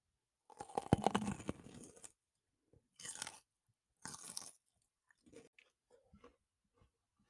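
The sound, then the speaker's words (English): A loud, wet crunching bite into a red bell pepper followed by a run of chewing, then two more crisp crunching bursts and softer, sporadic chewing sounds tapering off, with no one speaking. “Also brought a bell pepper, a red one.”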